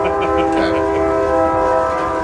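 A loud, sustained train horn blares steadily with rich harmonic tones, over the low rumble of a rolling train, continuous throughout.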